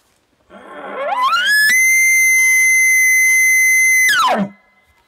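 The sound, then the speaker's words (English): An imitated elk bugle: a loud tone sweeps up from a low grunt to a piercing, steady high whistle held for about two and a half seconds, then drops quickly back down. “bugle as well, where I begin at the bottom of the octaves, run all the way to the top, and then run back to the bottom”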